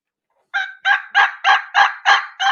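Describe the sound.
A turkey call produces a steady run of seven raspy yelps, a transition yelp, evenly spaced, loud and clear with no talking, following a brief moment of silence.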